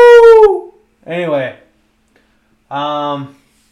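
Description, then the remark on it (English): A person imitates a wolf howl in three short vocal bursts: a high, falling cry first, then two lower, wavering howls, each separated by brief silence, loud. “I'd suggest you open your third eye and don't be a sheep, be a wolf. Be a wolf of the wolf pack.”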